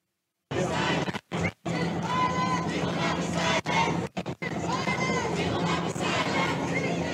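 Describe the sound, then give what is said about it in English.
A large crowd of protesters chants "speech is violence" together in a loud, dense wall of voices that holds steady for several seconds, broken by a few abrupt, brief dropouts. “And then, this is my favorite, the protesters started chanting, speech is violence.”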